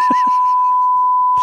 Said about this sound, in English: But he's still got to beep it. There we go. That's a nice long one.